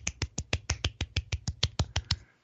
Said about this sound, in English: So during the pandemic, I want to give you a little golf clap right now.